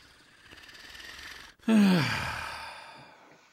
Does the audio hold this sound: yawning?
yes